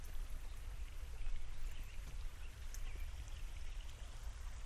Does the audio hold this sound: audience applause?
no